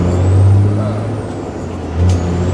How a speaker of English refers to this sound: Truck popped up in here.